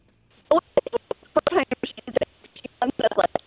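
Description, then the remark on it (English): Garbled, tinny speech over a cell phone line that keeps cutting in and out as the callers' cell phone connections drop, voice fragments arriving in short choppy bursts separated by abrupt gaps, thin and band-limited like a poor connection. “Oh, we're losing everybody. All right. I can't do that. We're losing everybody. Everybody's cell phone's gone.”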